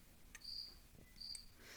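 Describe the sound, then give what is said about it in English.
A cricket chirps twice in a steady rhythm in a garage, each chirp a thin, high, shrill trill. It sounds fairly quiet against a faint background hush, and no one speaks. “Goddamn cricket.”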